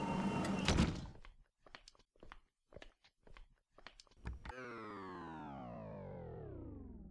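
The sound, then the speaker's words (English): A mechanical door slides shut with a whooshing rush, followed by a series of short clanking latches, then a long electric hum that slowly winds down in pitch. “Close the door on your way out, please.”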